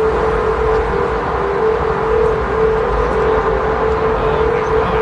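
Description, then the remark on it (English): Golden Gate Bridge humming in the wind: one steady, loud, mid-pitched drone holds unbroken over a broad wash of rumbling wind noise, with no voices. “There's no way you don't hear this.”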